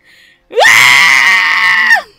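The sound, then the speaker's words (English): A single loud, piercing goat scream, held for about a second and a half with a sharp rising start and a quick drop at the end, alone after a brief faint sound. “like the screaming goat.”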